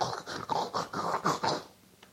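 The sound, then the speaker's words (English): A voice imitates the snoring of an obese person with sleep apnea, a rapid series of harsh, rattling snorts, roughly seven throaty pulses in quick rhythm, fairly loud, then trailing off into quiet. “You begin to snore and you get the...”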